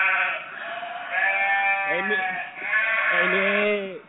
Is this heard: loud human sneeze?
no